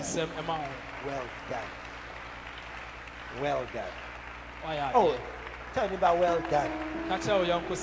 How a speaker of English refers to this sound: We have done things. Clap for yourself.